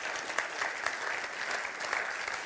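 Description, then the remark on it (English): An audience claps for God steadily, many hands producing a dense, continuous wash of bright, crackling claps at a fairly even level with no voices heard. “Give God a clap of him.”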